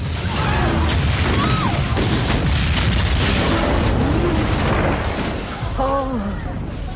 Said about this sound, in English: First one is the ship that gets blown up when they confront Cornwallis, and yeah, that woman goes, "Oh, fireworks, lovely."